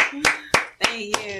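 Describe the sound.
Four sharp hand claps land in a steady, evenly spaced rhythm, each a crisp slap, while a voice hums or speaks faintly underneath.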